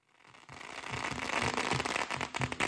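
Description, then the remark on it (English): A rapid, continuous string of firecrackers crackles and pops outside a bakery in Pineville, set off for Lunar New Year with a Lion Dance as smoke fills the air and spectators gather, building from a quiet start into a dense, loud barrage of sharp bangs that fills the whole clip. “Smoke fills the air as firecrackers erupt and spectators gather outside Lula Banh Mi and Bakery in Pineville on Sunday.”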